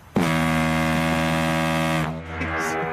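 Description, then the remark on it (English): A deep, sustained tugboat horn sound effect played on a radio show blares loudly for about two seconds, a rich low drone with strong harmonics, then cuts off abruptly, leaving a softer rumbling tail. “that's more of a tugboat than what I was. I was more thinking a love boat.”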